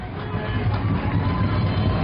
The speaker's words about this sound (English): Trojan fans stomping their feet, trying to make a little noise.